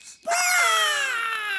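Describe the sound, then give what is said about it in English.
A group of voices lets out one long, loud squawk together after a count of three to warm up their voices, imitating birds, the shrill cry sliding slowly downward in pitch and holding for over a second. “Let's warm up our voices with a great big squawk together after three.”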